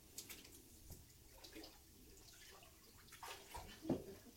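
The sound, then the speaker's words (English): Water sloshes and splashes in a baptismal tank, with soft irregular swishes and drips building to a louder splash near the end. No one speaks. “I usually tell them, don't touch this microphone or while you're in the water.”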